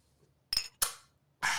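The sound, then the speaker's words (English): Glasses holding freshly poured shots of peach liquor clink together in a toast: three bright, ringing taps, fairly loud, each with a short shimmering decay, spaced unevenly over a quiet background with no talking. “Cheers. Cheers. Salute.”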